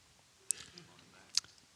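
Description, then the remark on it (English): Someone takes a quiet sip of water from a small cup: two soft, wet lip clicks about a second apart, with faint slurping noise in between. “can I have that little cup of water right there? Thank you.”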